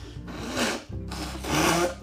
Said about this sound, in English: So, oh my God, my nose. I just sound like I farted. I probably didn't, like, let me just blow my nose, guys.